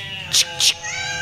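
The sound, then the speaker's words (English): Black cats yowling and caterwauling, a sustained wavering wail broken by two harsh, loud screeching bursts in quick succession, with no talking. “All right, you little fucking cats. Want to sing in my”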